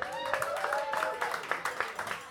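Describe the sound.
A crowd applauds steadily, a dense patter of clapping, with a few voices cheering and whooping over it, for a singer at the end of his set.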